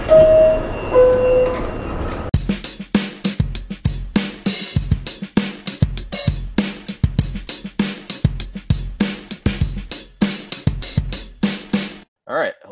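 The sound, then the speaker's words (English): A subway train departing a station: low rumbling with a two-note door chime at the start, then a steady stream of voice over the carriage noise until it cuts off. “Next stop, Daily Thoughts. Stand clear of the closing doors, please.”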